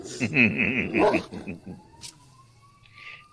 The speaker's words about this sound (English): Oh, you guys hear that? Yeah, hell yeah. Oh, shit. All right. Hear the dogs.